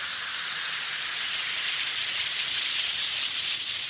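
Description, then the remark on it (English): A steady fizzing hiss of one or two Alka-Seltzer effervescent tablets dissolving in a glass of water, dense and continuous with fine crackling bubbles, heard alone without any talking. “Drop one or two Alka-Seltzer tablets into a glass of water like this. Listen to it fizz.”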